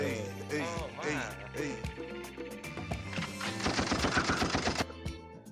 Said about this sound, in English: I always got to put gunshots.